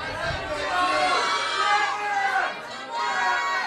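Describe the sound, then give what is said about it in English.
An audience shouts out their guesses at a quiz answer all at once for about 5 seconds, a dense, steady jumble of overlapping calls with no single voice standing out, holding loud for several seconds with a brief dip near the end. “All of you, just shout out loud what you think the answer is for 5 seconds.”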